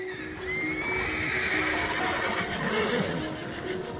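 A horse neighs in a long, wavering whinny that rises and then trembles downward, loud and clear for several seconds, with a steady low hum beneath and no talking.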